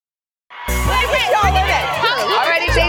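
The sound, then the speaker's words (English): A loud, steady babble of many overlapping voices fills an outdoor plaza on a cold Tuesday morning, with a holiday tree in place, broken by a few deep, heavy thumps underneath the crowd noise. “What is the crowd got going?”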